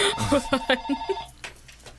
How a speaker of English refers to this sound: That fucking phone. Telephone. Wait, can you hang that up?